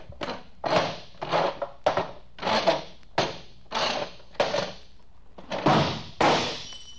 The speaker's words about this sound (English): Look, there's a drinking glass on that table. I'll squirm my chair over there and knock the glass on the floor to break it.